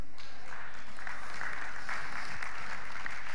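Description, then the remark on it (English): An audience claps steadily, a dense wash of many hands that swells slightly in the middle and holds at a moderate level without any voices over it. “We clap, but are you willing to get in your closet?”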